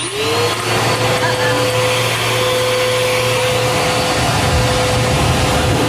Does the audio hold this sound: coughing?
no